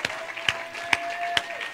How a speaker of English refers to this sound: Thank you. For Him. Clap for Him. Clap for Him.